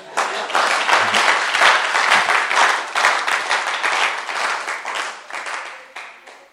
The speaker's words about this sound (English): Are you clapping or?